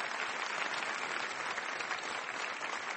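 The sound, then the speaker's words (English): A debate audience claps steadily and fairly loudly in one more round of applause for Robert Rosenkranz, a dense wash of many hands with no pauses, and nobody speaks over it. “And I'd like to invite one more round of applause for Robert Rosenkranz, please.”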